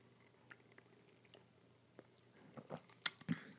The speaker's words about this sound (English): I'm going to have another sip of chai.